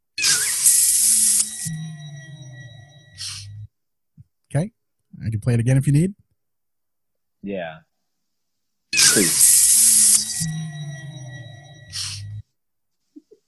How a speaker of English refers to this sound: That's him getting sprayed with piss. That is him getting sprayed with piss. Yeah, absolutely. I heard the sniff at the end.